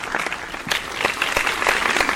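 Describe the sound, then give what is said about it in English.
A short burst of crowd applause played as a sound effect from a soundboard button, a dense wash of many hands clapping at a steady, fairly loud level with no voices over it. “Sean needs different claps, apparently.”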